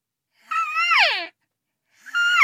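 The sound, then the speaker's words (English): A natural voice elk caller, world champion voice elk caller for 2017, imitates an elk bugle with her voice: two loud, high, whistling calls, the first rising then sliding steeply down into a lower grunt, the second starting after a short silence. “I am a natural voice elk caller.”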